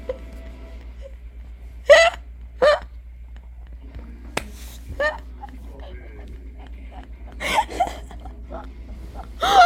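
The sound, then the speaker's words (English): A voice makes a series of short, choppy gagging and retching noises, fairly loud, in bursts separated by brief pauses, with some faint background hum. “Gagging.”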